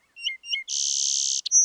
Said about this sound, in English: We're hearing a song sparrow over here. Dip, dip, dip. Different trills and buzzes. Song sparrows will sing throughout the winter, but the increase in song is correlated to increasing day length.